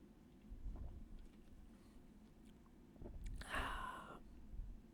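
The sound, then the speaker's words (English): A single loud slurping sip from a can of watermelon-flavoured cocktail, about a second long, following several seconds of quiet low background rumble with no talking. “I'm going to take a sip.”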